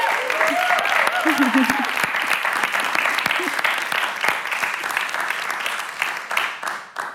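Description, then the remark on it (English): A crowd claps steadily for several seconds for a departing guest, a dense, loud patter of applause with a few voices and cheers rising over it before it tapers off at the end. “She's leaving us now, so can I just please get a little bit of a round of applause because you can hear us.”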